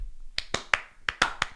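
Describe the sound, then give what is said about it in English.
A short burst of quick hand claps, about six sharp slaps in rapid succession with a brief pause midway, crisp with no talking. “Not a slow clap, just a fast clap.”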